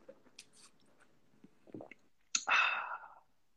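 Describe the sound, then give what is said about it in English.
A few faint handling clicks, then two cups of Costa Rica light roast coffee clink together in a toast with a single sharp knock that rings briefly with a bright, fading tone. “Oh yeah, let's do a little dink. So this is a classic. Dink it and then get a little sip.”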